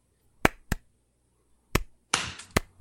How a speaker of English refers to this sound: We also have on the line, I think he was the one that was clapping